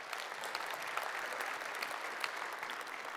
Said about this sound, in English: You can clap for him. That was amazing.